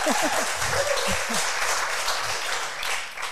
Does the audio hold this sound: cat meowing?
no